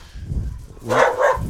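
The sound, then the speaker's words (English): Dogs bark back and forth through a fence with the neighbor's dogs in a couple of loud bursts, with a low rumbling background between the barks and no talking. “They're playing with the neighbor's dogs. Talking to each other through the fence.”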